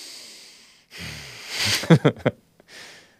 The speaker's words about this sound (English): Maybe I'm mouth breathing.